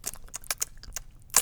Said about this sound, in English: I want you to take a bite of mainly like a pure starch like your rice or oats and keep on chewing it and notice if you can taste that it tastes a little bit sweeter. Okay. Maybe we could do it live on air. Yes, right up to the mic.